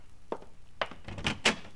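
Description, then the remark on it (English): A newspaper thuds against an apartment door at dawn, followed by a few more dull knocks and scuffs over a couple of seconds, with no one speaking. “Well, it was beginning to turn gray outside, and the jarring thump of the paper grazing my door told me a new dawn was with us.”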